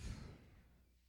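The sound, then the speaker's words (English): A single yawn from a tired person: a breathy, voiced exhale that starts fairly full and trails off softly over about a second, with no talking. “We fucking keep yawning for it, dude.”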